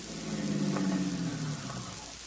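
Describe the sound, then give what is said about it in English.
A car engine idles with a low, steady rumble and a faint hum, unbroken for a couple of seconds, with no voices, after the car has been stopped in a street. “Stop the car, Vitamin.”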